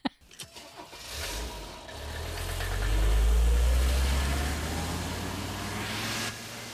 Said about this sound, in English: It's really fun when she drives away because they fade out her car engine. So it sounds like a rocket that's taking off.